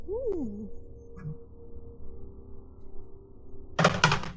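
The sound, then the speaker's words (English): Three ten-sided dice clatter loudly onto a microphone near the end, a burst of sharp, rattling hits after a stretch of low hum and faint murmuring. “I rolled in a different spot. It was very loud. Yeah, you rolled right on the microphone.”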